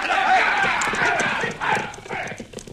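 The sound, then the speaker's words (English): Hooves of several horses clip-clop in a busy, uneven patter as riders mount up, steady throughout with a rushing wash behind them and faint voices murmuring underneath. “All right, boys, get up on your horses.”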